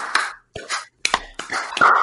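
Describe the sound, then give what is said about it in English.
A handful of sharp hand claps in a loose rhythmic pattern, each a crisp slap with brief pauses between bursts, fairly loud with no talking over them; a home-run celebration clap pattern meant for a stadium crowd. “We'd be bad at the eight clap.”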